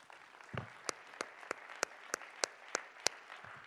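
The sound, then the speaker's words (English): An audience claps hands: roughly ten sharp, evenly spaced claps land about three per second over a steady wash of softer scattered applause, with no talking. “Let's clap our hands again.”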